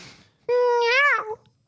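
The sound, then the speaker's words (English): Someone imitates a cat with a single loud, drawn-out meow lasting about a second, its pitch bending upward then dropping at the end, with no other talking around it. “Are you going to meow?”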